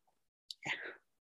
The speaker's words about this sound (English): Taking a first sip, which I'll do right now.